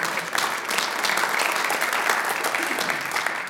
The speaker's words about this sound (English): And so with that, we know the devil, the enemy, is under the feet of Jesus, and we can all understand that, and we get excited about that. So we just clapped because I said he's under Jesus' feet.